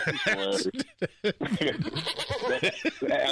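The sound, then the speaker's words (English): A human voice makes a wavering, goat-like bleat, fairly loud, broken into several quivering bursts that blend into laughter and brief talk. “did you just do a goat noise”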